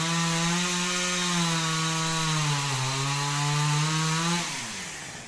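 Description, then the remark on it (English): A chainsaw engine roars loudly and steadily, its pitch sagging briefly midway before it winds down toward idle near the end. No one speaks. “There's a chainsaw.”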